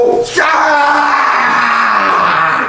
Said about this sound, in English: And I'm gonna scream bloody murder.